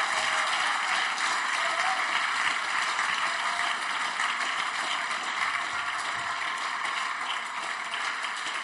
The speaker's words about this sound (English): Congratulations. God bless you. Clap for them.